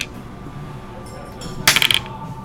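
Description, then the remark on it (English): A quick clatter of dice tumbling across a hard tabletop as a spell casting roll is made for the Cure Wounds spell, a burst of several sharp clicks lasting under half a second. “Okay, oddly enough, I am going to ask you to roll your spell casting okay. ability again. All right. As well as the dice.”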